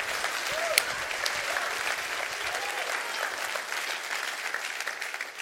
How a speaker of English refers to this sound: Would you clap your hands like the grace of Almighty God? Nothing.